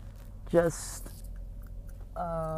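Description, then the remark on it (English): Wet smacking and clicking of gum being chewed by a person who is driving, with short voiced murmurs around it and a low steady background hum. “Sorry, I'm chewing gum.”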